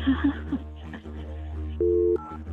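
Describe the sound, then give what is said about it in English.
A phone being dialed on The Jubal Show to call someone: a few quick beeps, then a steady electronic tone lasting about a third of a second, followed by a fainter higher tone, all over a constant low hum. “All right, I'm going to dial this phone over right now.”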